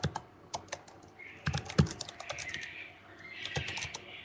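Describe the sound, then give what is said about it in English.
Rapid, uneven clacking of keys on a computer keyboard while typing a search for Aaron's rod turning, moderately loud, with bursts of several quick strokes and a few heavier hits; no voices. “God, this keyboard sucks.”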